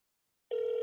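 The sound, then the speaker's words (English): After half a second of silence, a steady electronic ringback tone starts abruptly, the sound of a phone line ringing on an outgoing call, holding at an even volume through the end with no talking. “This phone's ringing.”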